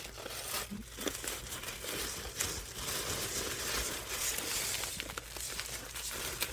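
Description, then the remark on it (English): Loud, wet chewing right against a microphone, a continuous crunchy, crackling mash of bites and smacks with no pauses and no talking. “Sorry, I'm chewing directly in the mic.”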